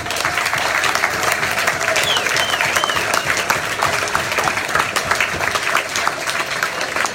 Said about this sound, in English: Without your support this season, this club will be nothing. So please give yourself a round of applause.